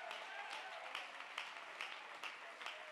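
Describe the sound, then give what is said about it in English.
An audience claps hands together to give praise to God, in a steady, even rhythm, a dense wash of many hands with regular louder beats, while indistinct voices mingle underneath. “Let's clap our hands and give the praise to God.”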